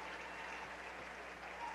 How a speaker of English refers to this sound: The runner-up trophy being awarded here to Stanton, as they get a round of applause from everybody here, including the St. Cecilia faithful. Show of sportsmanship there.